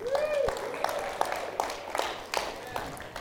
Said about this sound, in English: But yeah, whatever, you can clap for me. Good for me.